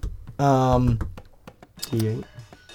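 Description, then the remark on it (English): Ten-sided dice clatter across a table in a quick run of sharp, hard clicks, with a voice sounding briefly over the rattling. “That's a D10, yeah. First one's gonna be a D10.”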